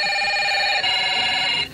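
A telephone rings with a steady, buzzing electronic tone, two bursts joined by a brief break, then cuts off, as a phone call is placed through the operator; fairly loud with no voices.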